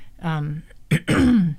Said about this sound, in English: Now I can't stop clearing my throat.